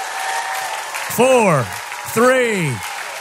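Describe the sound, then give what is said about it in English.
An audience claps steadily throughout while two loud, drawn-out shouts rise and fall in pitch, one after the other, above the applause, a five-second hand clap and shout of praise to God. “So give God a 5-second praise right now. Hand clap and a shout right now.”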